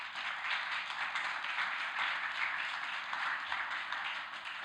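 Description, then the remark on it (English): An audience claps steadily for several seconds, a dense, even wash of many hands with no voices over it, holding at a fairly constant level before easing slightly at the end. “You can clap if you want.”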